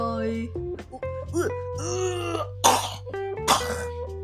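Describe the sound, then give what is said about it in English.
A child's voice makes playful sing-song vocal noises, then two harsh, breathy coughs burst out loud, about a second apart, near the end. “And he coughed.”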